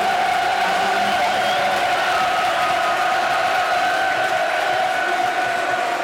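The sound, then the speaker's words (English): A large stadium crowd cheers and roars in one loud, unbroken wall of noise for several seconds, with a sustained sung or chanted tone running through the din. “Crowd loving the occasion.”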